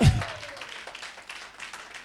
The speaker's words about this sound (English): Can you clap for Jesus?